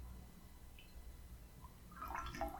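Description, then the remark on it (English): Near silence with a low rumble, then near the end a short burst of soft trickling and bubbling as water is poured onto sand in a little bowl holding a seashell. Quiet. “For this, and watch what happens when sand gets wet.”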